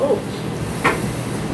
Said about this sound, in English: So during the early evening hours, when the street lights begin to turn on. There's someone that's trying to go in through the front door.